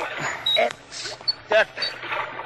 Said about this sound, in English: The engineer says from the amount of rust on the car, 2 or 3 days. Here, help me open the car door, Florio.